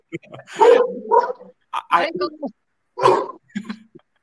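A dog barks and yelps in four uneven bursts over a few seconds, fairly loud, with short quiet gaps between the outbursts.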